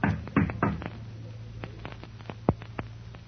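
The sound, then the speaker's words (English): A few hard knocks on the door of a theater manager's office, three quick raps at the start, then scattered single knocks over a low steady hum. No one speaks. “And what will happen when the door of the manager's office opens to his knock”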